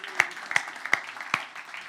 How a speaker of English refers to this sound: Would you give a round of applause for Dr. Willie Wilson?